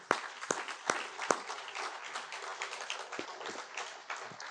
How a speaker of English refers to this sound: these are the cream of the crop of the young men and women that this country has to offer, that we send out there to do the Air Force's business every day, and we need to be very, very proud of them, and I would offer them a round of applause.